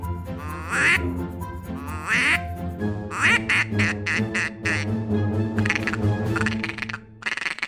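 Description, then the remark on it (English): A duck call blown loud: three calls in a row, first a male mallard call and then a female mallard call, both drawn-out quacks, which quicken into a rapid, chattering call of ducks feeding, with no talking over it. “It was the male mallard call, it was the female mallard call, and it was ducks feeding.”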